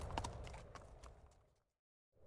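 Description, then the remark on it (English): Horse hooves clop in a quick, uneven rhythm as a horse is spurred to a trot, for about a second and a half, then fade into a brief silence before a low rumble returns. “Spurring his horse to a trot, Varys continues on towards Winterfell.”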